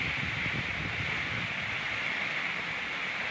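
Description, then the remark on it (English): Heavy rain during the rainy season in Tanzania pours down in a dense, steady hiss that holds constant throughout, with a low rumbling patter underneath and no voices. “It is raining so hard.”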